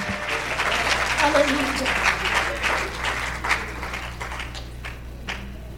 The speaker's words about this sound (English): Shout praise the Lord, somebody. Clap your hands to the Lord and lift your voice to him.